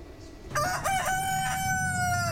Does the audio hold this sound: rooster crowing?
yes